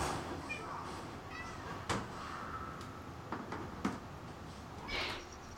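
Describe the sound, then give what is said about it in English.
A cat meows a few times with short plaintive cries, the clearest one near the end, over a low background hum and a couple of sharp knocks. “Oh my God, kitty, it'll be okay. Don't worry.”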